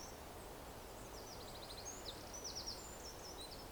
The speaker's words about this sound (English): I'm not very good at identifying bird song, but maybe it's some kind of finch, perhaps. Who cares? It's a beautiful sound.